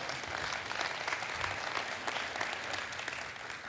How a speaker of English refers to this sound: Are you applauding because we celebrate Christmas?